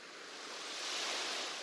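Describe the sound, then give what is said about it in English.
Broad, steady wash of ocean surf in a binaural soundscape, swelling gently and rolling on without pause, a soft continuous roar with no voices. “The soundscape is waves.”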